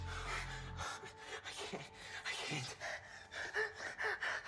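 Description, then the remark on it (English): Panicked gasping from a person having a panic attack, with quick, ragged breaths one after another in an uneven rapid rhythm, loud and breathy throughout with no words spoken. “Okay, just try and slow your breathing.”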